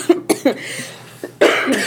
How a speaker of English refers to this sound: Maybe cough.